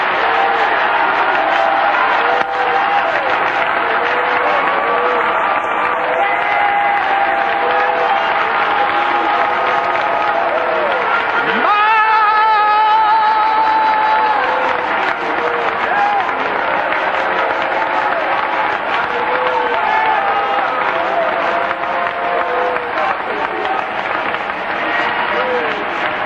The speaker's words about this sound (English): If you're one God, man or woman or child, would you please clap your hands and shout aloud?